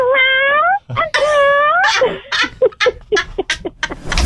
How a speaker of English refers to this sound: Like, I gotta hear that call again. How does the cat call your husband?